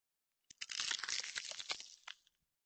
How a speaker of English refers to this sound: I heard the crackle of ice and I knew what was coming.